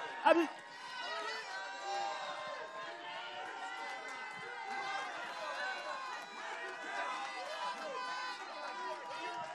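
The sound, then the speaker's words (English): A crowd at a church service erupts in a praise break after a 3, 2, 1 countdown, shouting and cheering in praise of Jesus, many voices overlapping in loud, high-pitched whoops and cries that hold steady for several seconds after a sharp burst at the start. “Can we do a praise break?”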